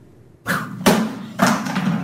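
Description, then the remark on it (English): A disc golf disc whipped across a room smashes into a television with a loud crash, cracking it, followed by two more heavy thuds and clattering impacts in quick succession, with no talking. “But when he carelessly whips one of those discs across the room... It breaks the TV.”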